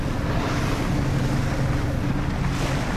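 The engine of a 20-foot-long research boat, used for a Whale Trust study of humpback whale song off Maui, drones steadily on open water, with constant wind buffeting and a wash of waves filling the background; no one speaks.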